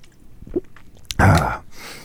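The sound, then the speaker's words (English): Mouth sounds of someone drinking from a new water bottle: a small wet click, then a loud, brief gulp and swallow, with no talking. “Just let me get a glug glug real quick.”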